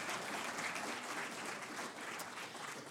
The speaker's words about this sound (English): So we applaud those that did show up.